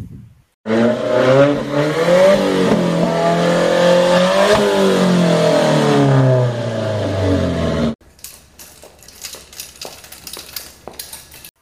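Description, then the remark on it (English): A jet ski engine revs loudly for about seven seconds, its droning pitch rising and dipping, then cuts off abruptly into quieter, scattered clinks and clatters. “Yeah, my jet ski.”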